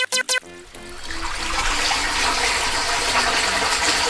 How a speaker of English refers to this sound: Oh, you know, just reverse the water from your hot springs, and instead, I am pumping gross, nasty sewer water your way.